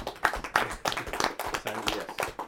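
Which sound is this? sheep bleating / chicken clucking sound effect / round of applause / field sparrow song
round of applause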